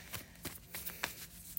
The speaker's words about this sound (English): Aquarius, I'm going to be, again, shuffling the tried and true Tarot Mucha.